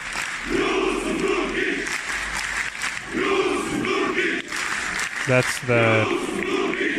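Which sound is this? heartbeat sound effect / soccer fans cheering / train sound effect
soccer fans cheering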